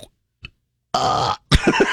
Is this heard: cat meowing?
no